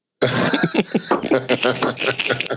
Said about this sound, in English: Fuck. They just make me choke on my water.